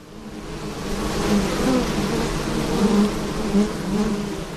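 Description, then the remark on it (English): A dense, continuous drone of many bees buzzing around active beehives kept by Territory Bees on a farm at Middle Point in Australia's Northern Territory, steady and layered with slight swells in pitch and loudness, with no voices present. “we've got some pumping beehives here, and they're located on a farm here at Middle Point”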